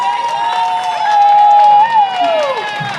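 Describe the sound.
Steady audience applause fills the three seconds, dense and fairly loud, with cheering voices rising and falling over the clapping, during a pre-race interview show presented by HOKA.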